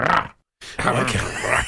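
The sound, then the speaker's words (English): A deep, rasping growl, loud, starts briefly, cuts to a short silence, then returns as a longer rumbling snarl that swells and fades. “Good growl, wasn't it?”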